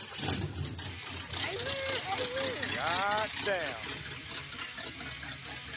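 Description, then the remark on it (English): A race car fastback's engine idles with a steady low rumble throughout, sitting beneath a man's voice speaking loudly over it. “For the fucking race car fastback.”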